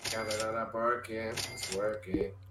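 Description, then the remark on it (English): A short, bright cash-register chime from a video game pops up near the end, briefly cutting through someone talking steadily over it. “There's just like fucking cash register sound effect like every 2 seconds and it's annoying.”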